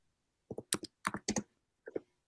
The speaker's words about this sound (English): Okay, a lot of typing going on. Not anymore.